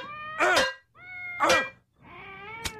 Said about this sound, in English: Is that the cat?